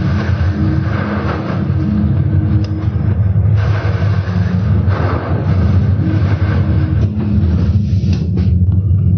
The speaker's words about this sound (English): Now, have you experienced sea storm before? Maybe you'll take a look at this video. Then we can appreciate it.